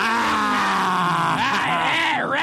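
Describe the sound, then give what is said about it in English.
A voice imitates a motorbike engine revving, a loud, continuous buzzing drone that rises and falls in pitch, with a sharp upward swoop near the end. “Rev it up, motherfucker.”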